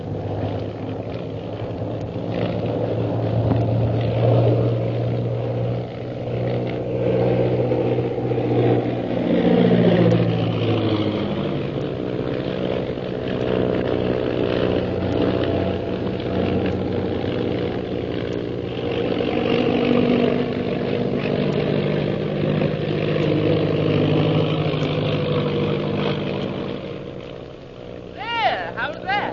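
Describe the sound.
A propeller airplane engine drones steadily throughout, loud, its pitch rising and falling slightly as it flies toward Shanghai, while people talk over the constant hum.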